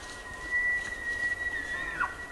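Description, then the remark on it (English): A bull elk bugles: one long, high, whistling note held steady for well over a second, then sliding abruptly downward at the end, over a soft, hissing background. Two bull elk call to outdo each other for female attention in a high meadow on an autumn evening in Yellowstone National Park. “Sound gatherer Jonathan Storm recorded the calls of two bull elk trying to outdo each other for female attention.”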